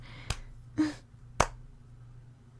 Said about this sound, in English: Okay. I'll snap. No, that's not how you snap. Yeah, it is. You don't use your mouth. Snap! There. I snapped.